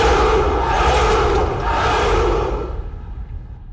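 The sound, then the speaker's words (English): A large crowd, the followers of Romulus, roars and shouts together in a loud, sustained cheer that holds steady for a few seconds, then begins to fade and thin out toward the end. “Delighted by this reply, the followers of Romulus let out a great cheer.”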